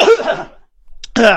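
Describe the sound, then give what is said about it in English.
A loud, intense sneeze erupts as a harsh, breathy burst, then after a short silence a second forceful, raspy blast follows, with no talking. “Yeah, that was a really intense sneeze.”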